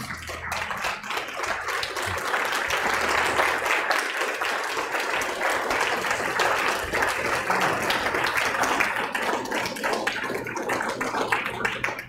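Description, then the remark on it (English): A church audience on a Sunday morning stands and applauds steadily for about twelve seconds, a dense, sustained wash of many hands clapping at once with no voices standing out, at a constant loud level. “And I don't know how we do that on a Sunday morning, whether we clap our hands or...”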